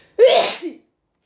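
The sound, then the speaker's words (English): A single loud sneeze bursts out sharply and tails off into a brief breathy finish, with no talking around it. “But then at some point, I realized, oh, wait, I gotta sneeze.”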